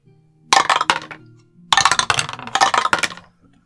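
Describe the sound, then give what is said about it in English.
Dice clatter and tumble through a dice tower in two separate bursts, a short rattle and then a longer run of sharp clicks and clacks, with no talking, as players roll for insight and investigation checks. “I'm not using your dice tower anymore.”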